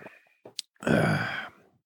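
A forceful, noisy sip of Flatland Brewing Company Lateral Lines Hazy IPA: a couple of faint clicks, then a loud breathy slurp that lasts about half a second before fading out. No one speaks.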